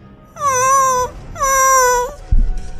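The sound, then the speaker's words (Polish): A dog, gripped in an old man's hands and thrashing and struggling, whimpers in two long, high, wavering whines with a short pause between, followed by a brief low thump or scuffle at the end. “Na psie, który wierzga, szamocze się. Już nawet nie warczy, on skomle.”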